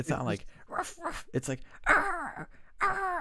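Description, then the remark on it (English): A person imitates a dog barking with a string of short, strained vocal yelps and whiny howls, fairly loud, bursting out irregularly over a few seconds. “It's like, I'm like, what fucking dog barks like that?”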